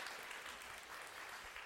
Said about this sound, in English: Okay, thank you. Can we give him a great round of applause?